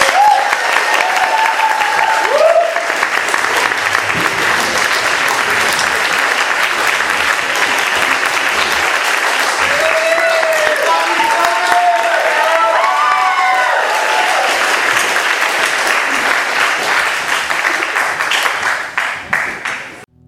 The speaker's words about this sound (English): So, but thank you so much for taking that time, and let's give Tony a hand of applause.